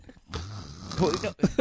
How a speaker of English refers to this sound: I've got a sinus infection. It's hard for me to breathe out of my nose. You're snoring. No, it's a sinus infection.